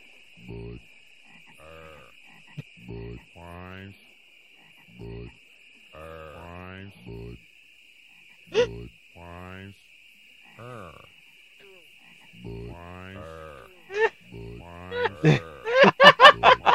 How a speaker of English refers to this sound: There's the frog commercial. I can't believe you guys never saw that. I love that.